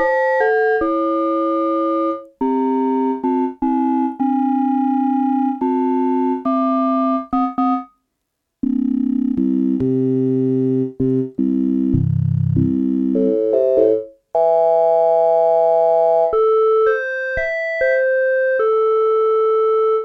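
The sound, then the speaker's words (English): Synthetic ring-modulated sine tones set in harmonic intervals from each other, with a metallic, bell-like quality, stepping through a series of short and sustained pitches for about twenty seconds, with a brief gap and a denser, buzzier stretch midway. “But if we get it to its so that they're in harmonic intervals from each other, that's when we start to get the weird kind of metallic-y sound.”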